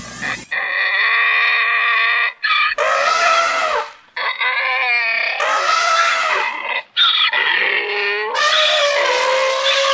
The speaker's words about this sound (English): We now present the presidential debate, interpreted and performed by an elephant and a donkey.